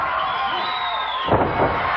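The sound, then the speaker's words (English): A loud wrestling crowd of fans at Disney MGM cheers and roars wildly, a dense continuous wash of voices with a sharper surge of shouting near the end and no single voice standing out. “Look at the fans going wild here at Disney MGM.”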